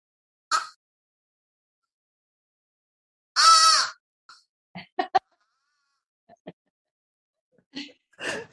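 A crow caws several times with no one talking: a short call, then a long, loud, raspy caw, followed by a scatter of brief clipped calls and two final caws near the end.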